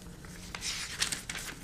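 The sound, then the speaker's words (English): Paper copies rustle and crinkle in a few quick, soft bursts, a dry papery shuffling that rises and falls over a second or so with no voices. “Just have the paper copies in front of me.”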